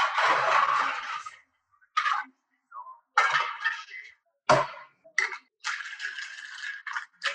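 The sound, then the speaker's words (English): A cocktail shaker is shaken with ice, strawberries and lemon juice, giving a muffled, dull rattle in a long opening burst followed by a string of shorter, uneven shakes with brief pauses between them. “So if you notice the shake is a lot less loud, it's muffled because you have fruit in there.”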